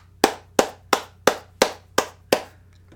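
A short round of applause made of seven sharp, evenly spaced hand claps in a steady rhythm, loud and crisp over a faint low hum, with no voices.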